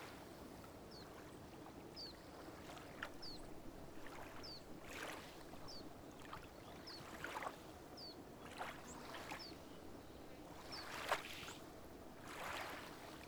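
Gentle water lapping in soft, irregular splashes against a hull, quiet, with faint high chirps repeating in the background and no voices, under winter sun with a gentle breeze.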